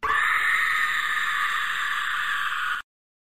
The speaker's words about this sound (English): I know you guys just like to hear the Porg yelling in your ear, so that's why I do it. I do it for the fans. I do it for the people. So the Porg yell is for you guys.